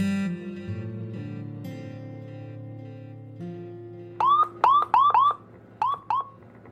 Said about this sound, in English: A siren from behind me made me jerk upright, slamming onto the brakes.